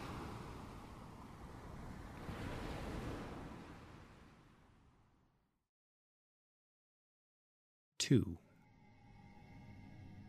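A roaring wash of ocean waves swells to a crash, then slowly recedes into silence; after a pause, a sudden sharp impact is followed by a low, droning hum.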